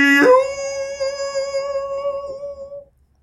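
A single dog howl, clear, that swoops up at the start and then holds a steady, drawn-out note for nearly three seconds before cutting off into quiet.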